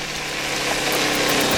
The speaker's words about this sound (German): Da hörte er plötzlich hinter sich ein Auto.